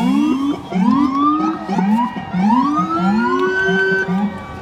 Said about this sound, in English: That was NYPD on motorcycles coming by. Pretty cool.